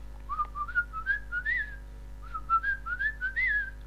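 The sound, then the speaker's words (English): A person whistles an imitation of a bird call: two phrases of short, rising chirpy notes, each climbing to a higher peak, separated by a brief pause. Clear, with no talking. “going beak down, tail up in the air, and doing a little whistle that went something like...”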